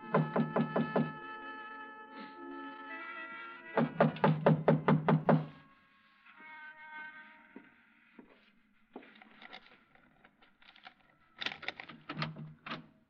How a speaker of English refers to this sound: I tried the front door, but it was locked. I didn't think anyone would be there that late, but I knocked anyway.